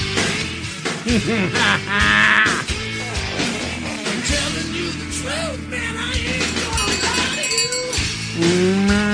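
A cow moos with a long, drawn-out low call, set against a dense, busy mix of music and other bleating farm-animal sounds that keep going throughout.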